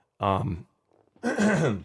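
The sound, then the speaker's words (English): A person clears their throat twice, two short voiced rasps separated by a brief pause, the second slightly longer, with no talking around them. “sorry, to kind of clear my throat here.”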